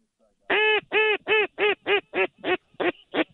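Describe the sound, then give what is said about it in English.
Nine loud, nasal pintail duck calls ring out in a quick, steady cadence, each one a short honking quack. No one talks. “There's a big pintail on this side, guys.”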